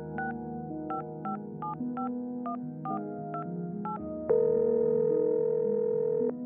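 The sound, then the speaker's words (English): A quick series of about nine beeping touch-tone dialing presses, then a steady, louder telephone dial tone holds for a couple of seconds, all over a soft musical background with no talking. “He had a phone conversation with his mom, who said that her son was brimming with happiness.”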